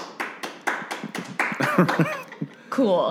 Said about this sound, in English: Okay, so is stuffed crust pizza a ravioli? If you are in favor, please clap.